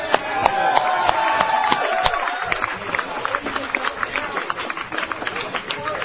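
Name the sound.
audience applause and cheering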